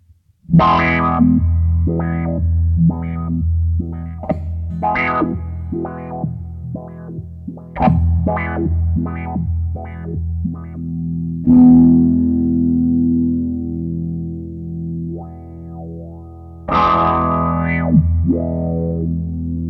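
An electric guitar runs through an envelope filter pedal on its sine-wave modulation setting, sweeping its tone in a wavering, wah-like motion, with repeated plucked notes and chords ringing out, then a sustained warbling chord near the end.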